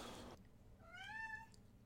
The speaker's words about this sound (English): Quit meowing. Well, give us some food. Doing the one thing you can do to get my attention so I can, you can feed me or love me.